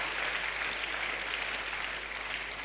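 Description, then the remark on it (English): A church audience claps for Jesus steadily and densely, the many overlapping hand claps blending into a continuous, fairly loud wash of applause with no voices standing out. “If you're clapping for Jesus, I think you should clap for Jesus.”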